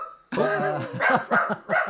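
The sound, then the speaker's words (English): A dog barks, starting with a long drawn-out howling bark followed by three or four quick, sharp yaps in a choppy rhythm, loud and with no talking. “Good That's, work, dog. We've got a second podcast dog. Lockie, shut up.”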